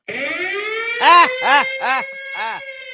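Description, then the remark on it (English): A voice imitates a siren: a sustained rising wail, then four short up-and-down whoops in a quick, uneven rhythm, loud with no other sounds around it. “Ah, yeah, you're already tired of my sirens.”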